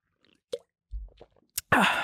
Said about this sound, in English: Jesus Christ, you are gulping, my boy.